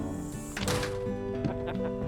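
A trailer's screen door swings shut with a sharp clattering thunk, followed by a couple of lighter rattling knocks as the frame settles, over a steady low hum.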